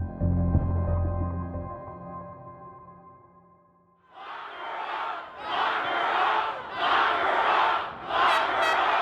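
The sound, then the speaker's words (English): A large crowd of protesters outside the Michigan Capitol building in Lansing, protesting Governor Whitmer's stay-at-home orders on April 30, 2020, shouts and chants in repeated swelling bursts, loud and rhythmic, after a sustained tonal hum fades out at the start. “On April 30th, 2020, a crowd of people gathered outside the Michigan Capitol building in Lansing to protest Governor Whitmer's stay-at-home orders.”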